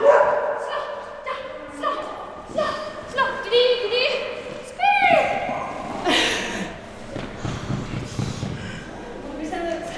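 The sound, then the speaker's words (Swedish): Several dogs bark and yip in quick, irregular bursts at a dog sport event in Västra Haninge, loud, with occasional higher whines mixed in amid a lively outdoor background of people talking. “Hundsport dök upp i kärlekspåsen senast och vi kastade oss iväg, Lasse, rakt in i bilen för att på nära håll fördjupa oss i detta”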